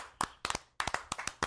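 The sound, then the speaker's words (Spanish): Brisk audience hand clapping, about a dozen sharp, separate claps in quick, slightly uneven rhythm, fairly loud with no voices over them, more like a few people clapping than a dense roar of applause. “Gracias por ese aplauso que se escucha en cada rincón de nuestro planeta, hermano mi chiquilla.”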